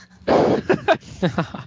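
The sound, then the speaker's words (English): A dog barks in a quick run of about five sharp yips, the first one longer and louder, the rest short and evenly spaced, with no talking. “Oh, dog.”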